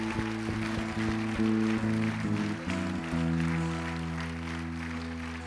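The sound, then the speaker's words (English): A church audience claps steadily throughout to send off a woman leaving for Thailand, a dense patter of many hands, mixed with sustained keyboard or organ chords that shift pitch a few times. “Let's give her a big clap and send her on her way to Thailand.”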